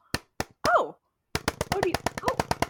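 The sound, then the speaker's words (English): Sharp knocks on a door by the day's arriving guest: three spaced single raps, then a fast, loud burst of about a dozen rapid knocks, with a brief vocal sound and faint voiced murmuring mixed in. “Do you hear that, audience? It's our guest for today. Let me go see who's at the door.”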